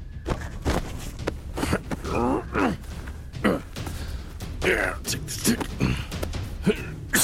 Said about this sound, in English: The man sneezed again, and like a gentleman, he covered his nose.